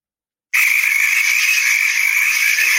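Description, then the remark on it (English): A quiz buzzer sound effect goes off abruptly as a buzz test after a brief silence, a loud, harsh, steady electronic buzz held for over two seconds with no talking. “All right, here's my buzzer.”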